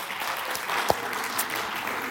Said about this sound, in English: so give a round of applause for her too.